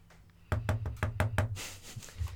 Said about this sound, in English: He opens the door. Ear. He opens the door. Okay, what do you want to do? The ear? Does your door creak? I don't know. I mean, it is pretty new. You got a fucked up door.